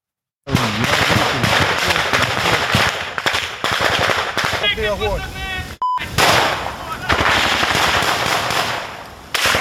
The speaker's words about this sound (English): On Thursday, a stunning firefight between Russian and Ukraine forces.